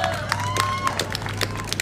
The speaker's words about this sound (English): So shout out to West Coast Design for making all this possible. Round of applause for West Coast. Come on.